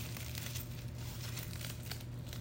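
Crinkling of a thin, paper-like material being handled, a steady run of irregular crackles and rustles over a low background hum, with no voices.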